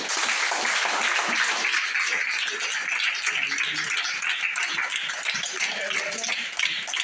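Sustained applause from a crowd, a dense, steady wash of many hands clapping at once that stays loud and even for about seven seconds without pausing.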